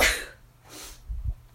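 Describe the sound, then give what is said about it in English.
A single sharp sneeze bursts out right at the start, followed by a softer breathy exhale and a couple of low muffled thumps. No one speaks. “Oh no, another sneeze.”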